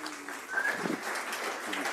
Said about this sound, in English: Come on up and give him another round of applause.